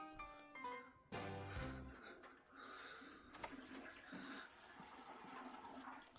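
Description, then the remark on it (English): A brief voice-like sound, then a toilet in an upstairs master bathroom flushes with a sudden loud whoosh, followed by steady rushing, gurgling water that continues to the end. “He sat in there not flushing the whole time?”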